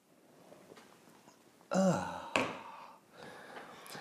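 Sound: sipping a drink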